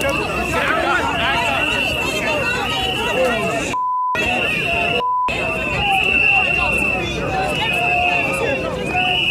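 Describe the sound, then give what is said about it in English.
A shrill, steady tone from protesters' whistles, handed out by a protester, rings almost nonstop over the loud babble of a shouting protest crowd as MTG tries to leave the scene, broken twice by brief silences, each holding a short electronic bleep. “So you hear those little whistles.”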